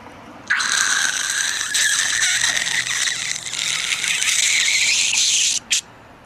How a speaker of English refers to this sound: Now, we must cut through the glass of this window.